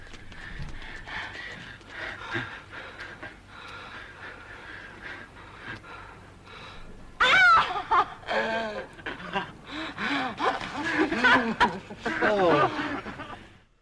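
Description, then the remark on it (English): Heavy, breathless panting from people in a French film who have just run a footrace to the end of a footbridge, ragged gasps coming loud, mixed with breathy vocal sounds after a quieter stretch of background noise. “My wife was working on a puzzle while this was playing in the background, and she knew it was a French film, and she hears the panting.”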